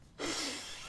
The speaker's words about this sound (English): I'm so sorry. I need to blow my nose. Okay.